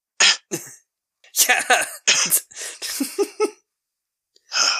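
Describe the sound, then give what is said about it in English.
A short fit of harsh coughs and throaty hawking by the film character Snake Plissken, injected with an engineered deadly virus, in rapid bursts broken by brief pauses, with a single short spoken word mixed in. “Oh, and this is the extent of the coughing fit that Snake Plissken has when he's injected with an engineered deadly virus.”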